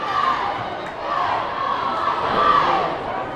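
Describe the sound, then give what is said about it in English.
A loud, continuous roar of crowd cheering fills a gym during a basketball game, a dense wash of many voices shouting and yelling together that swells slightly but never lets up, with no single voice standing out. “A very, very loud gym.”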